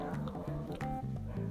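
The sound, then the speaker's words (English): Dogs outside struggling to breathe while inhaling smoke in poor air quality, giving a rapid series of raspy, snorting wheezes in quick repeated bursts, steady throughout. “Listen to that shit. I feel bad for these poor dogs, bruv. Because they are outside.”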